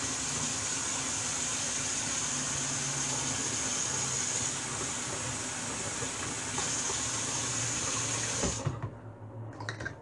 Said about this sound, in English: Then just add some more hot water. And let it sit for 2 weeks.